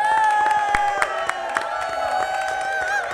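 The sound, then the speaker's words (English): A gathered crowd bursts into loud, sustained cheering, with high whoops and shouts layered over scattered sharp claps that keep going for the full few seconds, after Gordon Ramsay tastes a dish. “The audience erupts in a cheer.”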